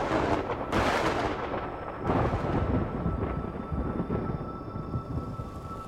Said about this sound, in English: A cool breeze. The crack of thunder. The dark sky illuminated by lightning.